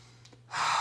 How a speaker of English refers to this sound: It's stopping and maybe starting with 3 deep breaths. Close your eyes.